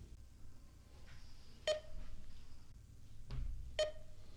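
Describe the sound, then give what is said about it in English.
Two short electronic beeps sound about two seconds apart, sharp and clear over a low background hum, like a computer alerting. “There's a computer beeping.”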